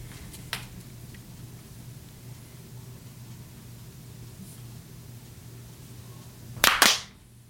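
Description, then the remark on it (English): A loud, ragged burst of hand claps near the end, a few hits landing almost together, after a faint single snap earlier over a steady low hum; several people clapping at once to sync their separate recordings. “Why don't we clap at 2:15 on the dot?”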